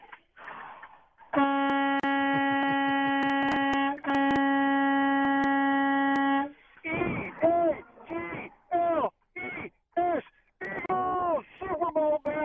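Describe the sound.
A loud, steady truck horn blares in two long blasts of about two and a half seconds each, separated by a very brief break. Someone starts talking right after the honking stops.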